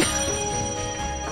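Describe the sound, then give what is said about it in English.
A loud, continuous telephone bell rings steadily with a bright metallic clatter, sustained for the whole moment, with no voices present; the phone is out in the Mojave desert among Joshua trees, with lightning around. “For me, that was kind of the moment, is hearing that phone ring.”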